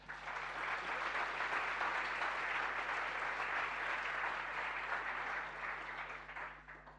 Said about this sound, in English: In a moment, I'm going to formally introduce our panel so that the listeners can hear who they are too, but for now, why don't you just practice by giving them a big round of applause.